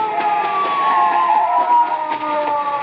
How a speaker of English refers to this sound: Wait, listen. A police car.